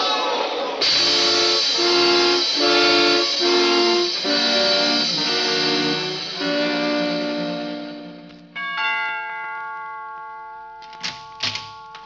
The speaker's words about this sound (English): Stan, look out. There's a train coming.